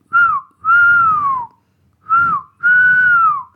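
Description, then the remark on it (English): Bingo whistles while flying high: loud, clear whistling in four notes, each a short note followed by a longer, gently falling one, repeated twice with a brief pause between the pairs. No one speaks. “Meanwhile, Bingo flew high and whistled.”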